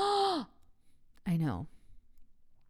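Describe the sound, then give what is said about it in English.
A loud, theatrical vocal gasp opens, sharp and breathy, followed after a short pause by a second drawn-out exaggerated gasp or sigh that trails downward, with no speech. “Everybody gasp.”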